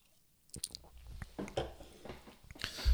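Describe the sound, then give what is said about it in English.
Someone takes a quick sip of a drink, with a few small wet mouth clicks and slurping noises building to a louder slurp at the end; no one speaks. “Let me just take a real quick sip.”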